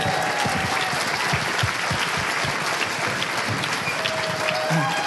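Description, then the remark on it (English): A live show audience applauds as a guest is welcomed to the stage, dense clapping holding at an even, loud level for several seconds with no break, a few faint voices and whoops mixed into the wash of hands. “Give it up for Toby.”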